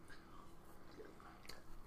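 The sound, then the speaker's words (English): Crunchy chewing of Crunch 'n Munch salty snack mix, with soft irregular crackles and crunches over about two seconds, fairly quiet. “Salty snack mix. This is going to sound real good in the microphone, too.”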